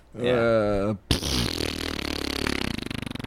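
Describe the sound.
A person blows a loud mouth-made fart noise: a brief wavering vocal lead-in, then a long, buzzing, fluttering raspberry that sputters rhythmically for about two seconds.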